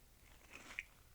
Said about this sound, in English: while you're crunching away, you think it's ready?